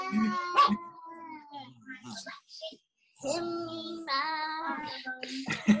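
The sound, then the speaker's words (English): A dog whimpers and whines in long, wavering high-pitched cries, broken by a few sharp yips and barks, loud, with a brief pause midway. “Reggie, leave the dog alone.”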